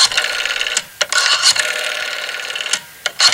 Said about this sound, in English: I couldn't really find any specific records on exactly what was said or how it was said, but I like to think it was on a rotary-based phone call.